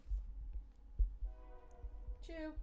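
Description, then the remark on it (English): A train horn sounds over a low rumbling of the rails, holding a steady tone before a brief louder, bending blast near the end. “We haven't had a train in a while.”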